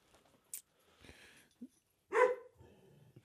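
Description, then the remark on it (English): Dogs bark in short, scattered bursts, with one loud, sharp bark standing out near the end among quieter yips and a brief rustle; no one speaks. “Borking dogs this episode.”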